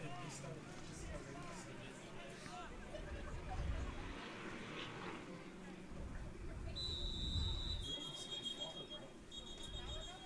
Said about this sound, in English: Now another whistle. And we're going to get another discussion here by the officials.